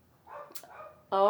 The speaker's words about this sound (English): Well, I hear my dog daughter. She's freaking out. Yeah, something's going on out there.